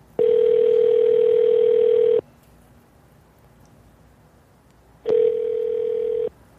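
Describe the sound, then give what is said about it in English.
Ringback tone on an outgoing phone call to a sheriff's office in Tattnall County, Georgia: a steady, buzzy electronic ring lasting about two seconds, a pause of silence, then the start of another ring. No one speaks. “I sent emails and I called once a week for a few weeks, but I'm pretty sure he was dodging my phone calls.”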